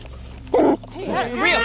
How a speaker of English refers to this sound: You hear the officer's police dog barking in the back of the patrol car. And then suddenly, that sound gets closer.